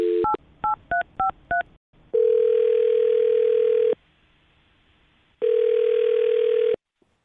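A phone call being placed: a quick run of keypad dialing beeps, then two long, steady ringback tones separated by a pause, heard clearly with no one talking.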